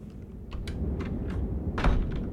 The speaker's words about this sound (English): I'm going to open this door and walk out into the snowy forest and hopefully everything will be A-okay. So I'm just going to open this door here.